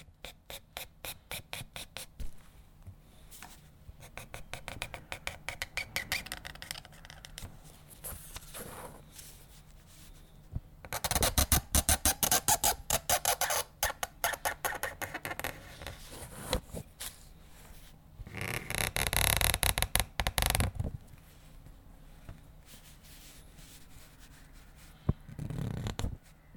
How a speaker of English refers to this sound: it's the sound of the reed pen that he uses touching the paper. It's the sound of him writing.